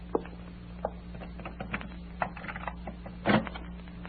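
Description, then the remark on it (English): An office door being unlocked: a scatter of small metallic clicks and rattles, then a louder scraping clatter near the end, with a steady low hum underneath and no talking. “Just a minute till I unlock the door.”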